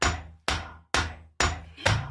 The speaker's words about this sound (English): Now that's an orange-hot tool blade right out of the fire. There are three men encircling it as it's held to the floor by a fourth, all three pummeling it flat and sharp with long-handled hammers in tempo.